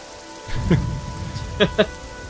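Steady rain patters and hisses, with a few brighter splashy drops standing out over the continuous wash of falling water.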